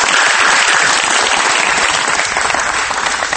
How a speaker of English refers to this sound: I deserve a gigantic hand clap right now because I just removed obstacles from your life with information.